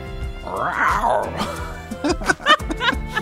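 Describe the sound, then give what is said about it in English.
A domestic cat lets out a drawn-out, wavering yowl that rises and falls in pitch, followed by a few short, harsher bursts of sound. “That's a domesticated cat for sure.”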